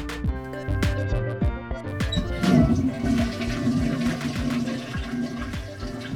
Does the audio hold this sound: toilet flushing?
yes